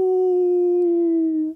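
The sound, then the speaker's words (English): A single long, wolf-like howl attributed to the Ahool, a large winged cryptid said to live in the jungles of Java, Indonesia, holds one steady, slightly falling pitch for about a second and a half, loud, then cuts off abruptly. No talking. “Wait, so, okay, it calls out its own name, but it just howls like a wolf?”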